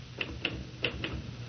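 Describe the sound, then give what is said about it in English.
Four sharp, clicky typewriter keystrokes at an uneven pace in an office, each a bright metallic tick over a low steady hum; no voices. “Listen, will you knock it off with the typing and look at me for Pete's sake?”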